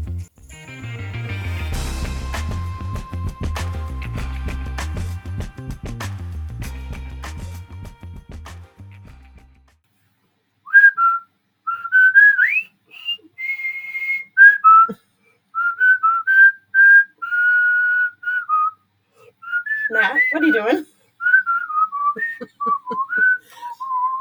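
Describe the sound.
After a stretch of full instrumental music, a clear whistled marching tune begins, bright and steady, its phrases falling in crisp rhythmic bursts with short pauses between them. It is the tune the soldiers whistle on their way into the POW camp in the film Bridge on the River Kwai.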